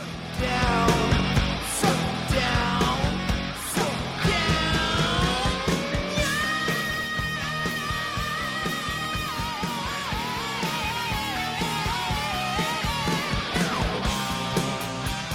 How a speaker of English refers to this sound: You ready to hear this scream? Yes. All right, I'm going to start it here.